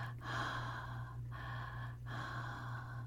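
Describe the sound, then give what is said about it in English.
Loud, heavy breathing, a person deliberately huffing in slow rhythmic breaths like a creepy late-night caller, with brief pauses between breaths over a steady low hum. “Like one of those people that you call up late at night and you just start breathing.”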